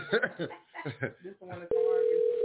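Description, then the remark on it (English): A steady, buzzing ringback tone of an outgoing phone call starts abruptly after a few seconds of tinny, phone-filtered talking and holds at even loudness to the end. “She always asks me to phone her.”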